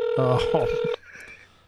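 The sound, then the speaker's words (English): A steady electronic telephone tone sounds for about a second under overlapping voices as a phone call goes unanswered, then cuts off abruptly, leaving faint low noise behind. “I guess he's not answering. He's not answering his phone.”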